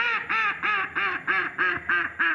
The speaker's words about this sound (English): That's a mallard duck. Female, of course.